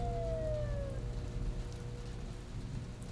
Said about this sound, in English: Just as he was hauling himself up from the thick brown mud, he heard a siren in the distance.